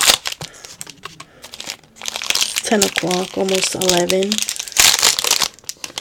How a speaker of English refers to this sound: What I opened was a Reese's peanut butter football.